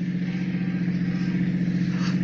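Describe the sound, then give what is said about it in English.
A car engine runs steadily at a constant low hum, as if heard from inside a moving vehicle, fairly loud with no voices. “Stop the car.”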